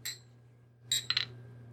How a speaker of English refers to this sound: Well, let's get this party going with the traditional opening shot so I can start this timer. Cheers, guys.